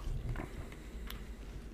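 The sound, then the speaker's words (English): Quiet chewing and crunching on a Blow Pop lollipop, getting to its bubble gum center, with a few brief, sharp bites and mouth clicks scattered over a low, steady background hum. No one speaks. “I'm getting to the center of my blow pop.”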